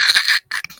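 About 20 dice rattle and clatter together, a dense burst of clicks that stops briefly and then resumes with a few scattered knocks as they settle.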